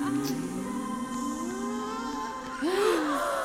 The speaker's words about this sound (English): I hear his breathing. How it breaks.